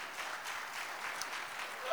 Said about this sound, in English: Come on, let's give the Lord one more great clap offering. Amen.